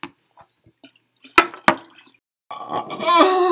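loud burp

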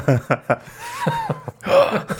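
audible gasp

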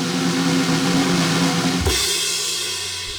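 drumroll

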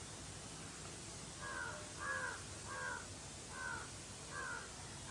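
crow cawing

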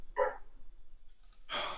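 dog barking

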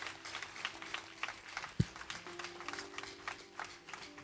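audience clapping

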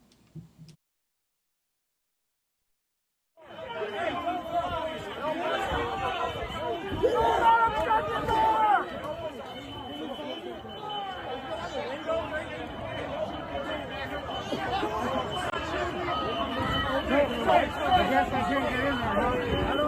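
crowd noise

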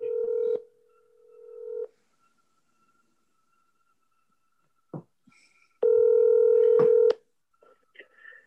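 phone number being dialed

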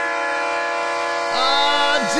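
train horn sound effect

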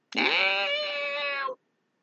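cat screaming

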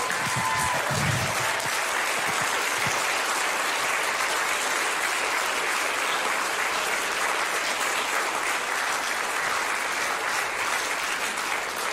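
audience applauding and cheering

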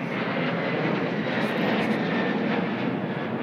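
airplane flying overhead

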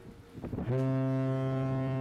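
foghorn blast

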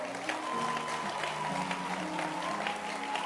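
audience hand clapping

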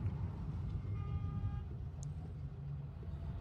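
car horn honking

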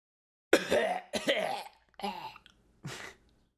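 coughing

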